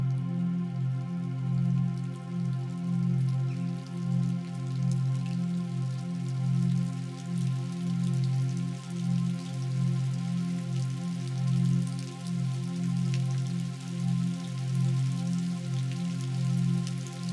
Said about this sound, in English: Then suddenly, coming from nowhere, it starts to rain. The heavens open and everything changes.